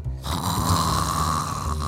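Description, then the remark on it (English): A group of people fake snoring together, a loud, rumbling chorus of low, rasping snores that fills the whole moment with a steady, exaggerated drone. “If you can hear me clap once, if you can hear me clap twice, if you can hear me play asleep.”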